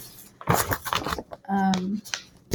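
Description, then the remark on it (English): Rustling and flipping of book pages as someone looks for a page, in a few quick papery bursts, followed by a brief voiced hum, then another soft page rustle. “Here, I'm shuffling because I'm looking.”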